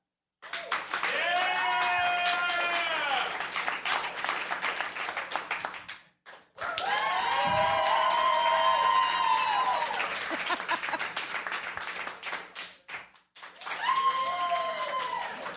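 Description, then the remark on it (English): An audience breaks into loud applause three times, clapping to vote for one of three options: dense clapping mixed with cheers and whoops; the first two bursts last several seconds each before a short pause, and the third begins at the end. “So with a round of sounds and applause, we're going to figure out who we want up on stage so we can figure this shit out.”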